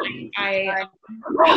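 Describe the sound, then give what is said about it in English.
A puppy lets out a few high-pitched yappy barks in quick succession, with a brief pause before the last loud yelp. “Puppies are on the show now. First dog guest.”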